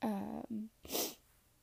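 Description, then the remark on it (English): A brief voiced, shaky sound is followed by a single sharp, breathy sniff through the nose, then silence. “Sorry for sniffing, guys.”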